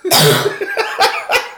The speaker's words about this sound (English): I just coughed on him. I cough in your general direction.